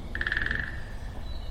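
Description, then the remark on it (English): A bird in spring woods, on an unseasonably warm spring day in the 60s, gives one quick, buzzy trill of about a dozen rapid notes at a steady mid-high pitch, trailing off after half a second over a low, rumbling background hum. “We have peaceful bird noises.”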